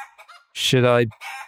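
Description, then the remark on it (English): A chicken, one of two about 3 feet away, lets out a loud, close, drawn-out squawking call, framed by softer clucks and scratchy bird noises just before and after. “As we record, I am about 3 feet away from two chickens.”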